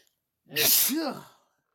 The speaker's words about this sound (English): Oh no. He sneezed.